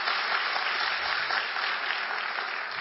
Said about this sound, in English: Give yourselves a hand for being a good student. Now look at your neighbor and clap even harder for them.